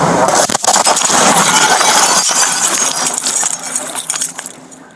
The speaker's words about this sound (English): New video this morning shows the moment a home in New Jersey exploded as firefighters worked to put out a fire inside.